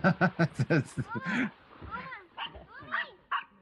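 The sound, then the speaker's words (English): A dog lets out a quick run of five or six sharp barks, then trails off into a series of high, wavering whines and whimpers. “The dog.”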